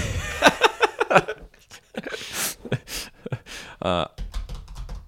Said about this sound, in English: Wow, it's a heavy-handed keyboard typing.